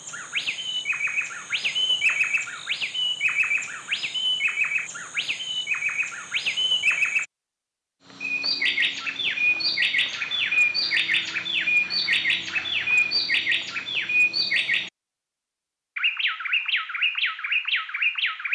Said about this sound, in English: Now they're going to sing together. This is called an antiphonal duet, except now we've separated their songs.